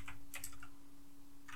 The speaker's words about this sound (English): Let's have a look. I love listening to your keyboard. Can you just give us a little... Nice. It's a mechanical keyboard, baby.